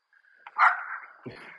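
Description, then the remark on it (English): A small Jack Russell terrier, out on a walk, barks at deer: a short burst of sharp, high-pitched barking, a couple of yappy barks running together, moderately loud with no talking. “My Jack Russell is barking at the deers.”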